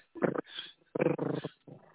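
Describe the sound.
A phone-in caller imitates a cat's purr with their voice in three rough, rolling bursts, moderately loud, with no other talking.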